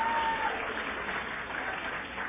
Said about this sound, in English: Please give her a round of applause, will you?